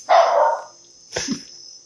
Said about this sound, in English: All right, so oh, my dog's barking. Max, be quiet. Oh my God, Max. Stop being so disrespectful.